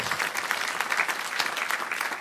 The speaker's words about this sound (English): I'll wait while you clap your hands there.